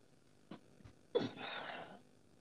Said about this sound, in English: Somebody breathing hard as hell.